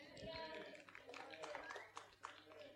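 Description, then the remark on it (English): An audience claps in a brief, scattered burst of uneven hand claps, fairly faint, with voices murmuring underneath. “That deserves a clap.”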